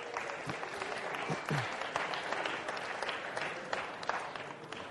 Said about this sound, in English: All right, everybody applaud that table. They win.